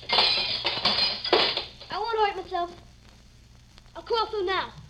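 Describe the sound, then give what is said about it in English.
Glass is knocked out of a window frame in a quick burst of sharp clinks and clatter, followed by short bursts of a voice speaking. “But knock out all the glass so you won't get hurt.”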